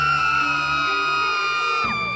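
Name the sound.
distant screaming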